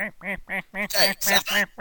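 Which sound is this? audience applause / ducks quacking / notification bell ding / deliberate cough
ducks quacking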